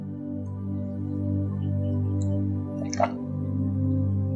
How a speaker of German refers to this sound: Atme tief ein und tief aus. Und am Ende deiner Ausatmung nimmst du einen kleinen Schluck deines heißen Wassers.